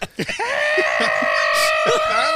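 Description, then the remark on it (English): A loud, sustained scream holds one steady pitch for about two seconds, strained and bleating at the edges, while brief bits of other voices break in underneath. “Ride off, which is just constant screaming.”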